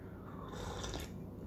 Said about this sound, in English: And a slurp as well, like an old man slurping Heinz tomato soup.